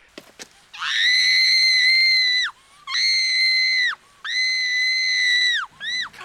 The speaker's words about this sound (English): And they just, what, that, oh God, that whole sequence where she's just getting strangled and screaming.